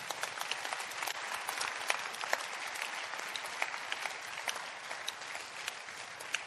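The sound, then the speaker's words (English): An audience claps for God during a sermon, steadily for several seconds, a dense, even patter of many hands at a fairly loud, constant level with no voices rising above it. “Clap for God.”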